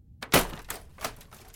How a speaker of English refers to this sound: He continues pushing it closer, closer to the edge of the desk, until reaching the tipping point. The laptop drops to the floor with a thud.